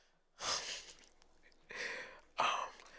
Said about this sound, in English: As he sniffs the mic, what the fuck?